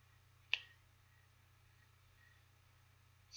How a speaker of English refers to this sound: And now, when I snap my fingers, you will awaken.